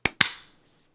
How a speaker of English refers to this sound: We'll do a clap sync in 3, 2, 1.